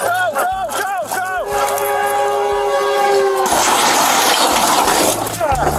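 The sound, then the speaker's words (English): Voices shout urgently as a train horn blares in a long steady blast, then a loud roaring crash as the train strikes a small plane on the railroad tracks, with grinding debris swamping everything, and shouting returning at the end. “Listen to the video as the police officer pulls the bloody man to safety just seconds before the train crashes.”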